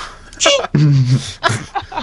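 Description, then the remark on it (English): A sharp, sudden sneeze from a baby panda, followed by a drawn-out whining cry and some fainter rustling sounds. “You gotta get the sneezing baby panda.”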